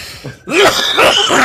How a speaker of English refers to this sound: Over 30 days, still coughing. Gotta love it.